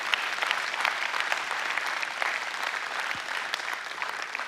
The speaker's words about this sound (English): If the Lord has done one thing for you in the last 24 hours, if he's done anything for you, I want us just to give a hand clap of praise. Let's have a praise.